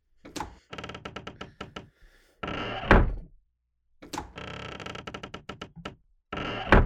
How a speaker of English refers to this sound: Now, obviously, they want a more ominous sound, spooky-like. So, this is our spooky, creaky door. Go ahead, give it a go. Open, close it a few times. You'll get the feel.